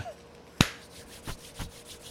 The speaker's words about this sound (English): And then he does the old. Yep. Claps his hands and, yep.